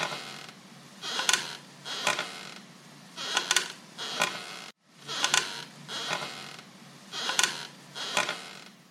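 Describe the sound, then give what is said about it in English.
A rocking chair in a bedroom creaks back and forth on its own in a slow, steady rhythm, each sway bringing a pair of dry, woody creaks over a faint background hiss, with no voices. “However, A rocking chair in her room was moving back and forth of its own volition, and continued to do so for at least 20 minutes.”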